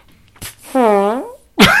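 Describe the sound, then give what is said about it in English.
A person makes a drawn-out buzzing mouth noise imitating a fart, bracketed by short sharp vocal bursts, fairly loud. “I don't think you're going to fart your soul out, sir.”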